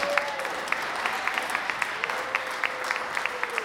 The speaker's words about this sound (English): Do a round of applause.